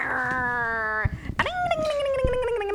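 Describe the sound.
A voice imitates a moped engine with a steady, buzzy hum, breaks briefly, then revs up into a higher whining tone that slowly sinks in pitch.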